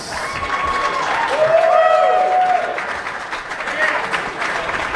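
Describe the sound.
An audience breaks into steady, dense applause that fills the whole stretch, many hands clapping at once, with a few scattered voices and cheers rising above the noise.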